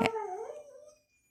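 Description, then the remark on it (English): A puppy lets out a short, wavering howl, rising and dipping in pitch for about a second before trailing off into silence. Moderately loud, with no talking. “that's my puppy, Mr. Dickens, singing along with the podcast”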